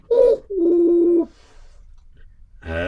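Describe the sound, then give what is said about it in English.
A doorbell, rung by people bringing a child to a family's door, chimes in two tones, a short higher note followed by a longer, lower sustained note, ringing out loudly on its own before a brief quiet pause. “And this child was brought to their door, and they rang the bell.”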